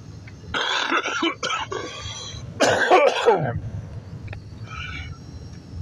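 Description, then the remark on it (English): Two bursts of harsh coughing and throat clearing, each lasting about a second, separated by a short pause, with a faint rustle near the end. “Really do apologize for all this coughing.”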